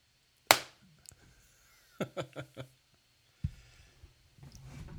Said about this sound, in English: me just do a clap to sync.